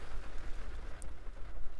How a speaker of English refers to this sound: I didn't think about the rain and how loud it might be. The wind stopped right now, so that's good.